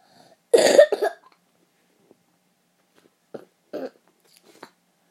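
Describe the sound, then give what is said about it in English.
A loud cough, a harsh burst quickly followed by a shorter second one, then a pause and a few softer, muffled coughs or throat sounds. “Did I mention I have a cough in the other podcast episode?”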